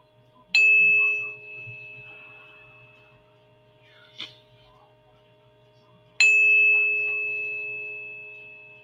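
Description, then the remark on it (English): A tuning fork is struck twice, each strike ringing out as a clear, steady pure tone that slowly fades; a faint tap falls between the two strikes, with no talking. “I've got the 432 tuning fork, which I was told is the cosmic heart. 432 hertz.”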